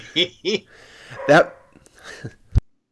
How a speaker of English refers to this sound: There come the dogs.